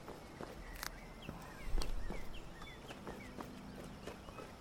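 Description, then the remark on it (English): Horse hooves clip-clop in a steady walking rhythm, with faint bird chirps scattered in the background and no voices. The horse is coming after being whistled for. “In fact, time to whistle for the horse.”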